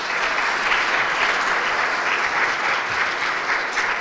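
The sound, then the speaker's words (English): A large church audience applauds steadily to welcome people into its fellowship, a dense, sustained wash of many hands clapping at once, loud, with no talking heard. “Now that you can have a seat, give them a round of applause, please.”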